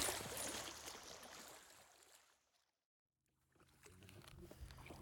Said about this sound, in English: Well, we're still in the river. We're done fishing, but we're still in the river. it's pitch dark. We misjudged our time.